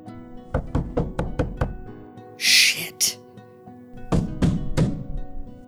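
Sundown Police Department officers knock loudly on an apartment door after neighbors reported gunshots: a rapid burst of about six heavy raps, a brief breathy hiss, then three more firm knocks.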